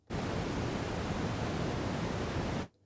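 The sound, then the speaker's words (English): Apple's built-in dark noise background sound sample: a steady, deep rumbling noise like muffled static plays alone for about two and a half seconds at constant loudness, weighted toward low tones, then cuts off abruptly. “Dark noise.”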